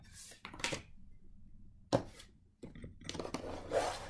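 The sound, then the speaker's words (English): Cards being shuffled: a few brisk, papery riffles and snaps, with a sharp slap near the middle and a longer rustling run at the end, all fairly quiet and without talk. “Oh, I'm shuffling?”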